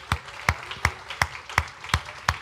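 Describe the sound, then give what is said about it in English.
A church audience claps hands together to thank God in a steady, even rhythm, about seven loud, sharp claps in unison with short gaps between them and no voices. “Let's clap our hands and thank him.”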